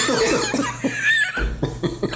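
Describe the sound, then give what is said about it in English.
A string of loud, theatrical coughs bursts out in quick succession, mixed with bits of laughter and a low steady hum underneath. “It's going to try to interrupt you with the exaggerated coughs.”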